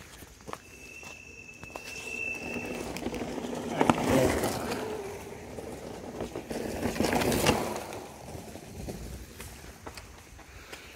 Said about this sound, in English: A little traffic in the woods. So yeah, what was I saying? We're like flying by. We need some speed limits out here in the middle of nowhere.